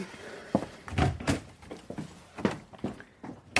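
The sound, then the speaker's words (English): Several soft, uneven footsteps thud across the floor as a woman leaves the room, followed by the clunk and knock of the door being shut behind her, with faint room noise between the impacts and no voices. “She leaves and closes the door.”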